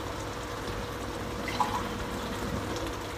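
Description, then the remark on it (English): A cup of water is poured into a cooking pot of beef mince with potatoes in a steady, continuous splash lasting a few seconds, with no one speaking. “Pack a cup of water in it to get the potatoes nice and soft.”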